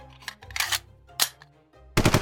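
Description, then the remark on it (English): Loud bursts of rapid gunfire as Graka's shooter is fired until it clicks empty, several volleys of sharp cracks separated by brief lulls, ending in a dense, intense final burst. No voices. “He squeezed hard until it clicked empty, until the sparks stopped and the screen died.”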